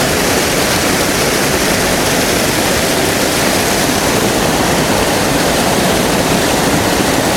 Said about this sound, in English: Right, it's going to be very loud. So this should be quite nice because I'll have water in the foreground and the main waterfall in the background.